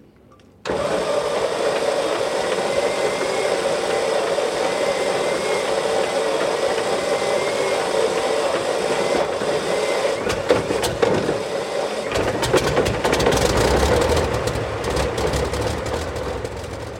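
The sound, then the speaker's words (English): A large Merlin piston aircraft engine starts abruptly at a Wings Museum engine run event and runs steadily with a deep, throbbing roar, growing rougher and louder with sharp crackles toward the end, without speech. “Today we're at the museum for one of our fantastic Merlin engine run events”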